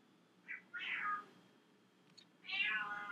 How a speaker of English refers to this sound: Do you hear this? I have a really fucking demanding cat. Or she's not mine. She's kind of mine. She's so aggressive. She's like, so mad all the time. She just yells at you. Every time I see her and she's yelling at me, it's because of food.